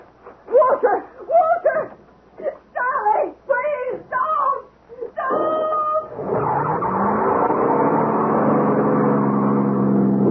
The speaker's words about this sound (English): Was gone, drowned by the roar of the engine.